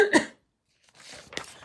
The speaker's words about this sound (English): And let me cough again.